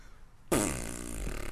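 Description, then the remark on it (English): After a brief quiet moment, a loud fart noise bursts in abruptly and stretches out for about a second, buzzy and raspy with a wavering pitch, heard on its own. “I wish they would actually get someone to fart in a microphone or at least make farting noises with a mouth, because I'm just tired of stock Foley fart noises. Listen to this, guys.”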